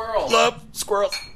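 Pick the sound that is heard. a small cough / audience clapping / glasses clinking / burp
glasses clinking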